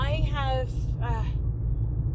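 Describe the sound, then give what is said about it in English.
A steady, heavy low rumble of road and engine noise fills a car interior throughout, with a person talking over it for the first half before the drone continues alone. “Now I'm in the car again, so you're gonna hear all the background noise.”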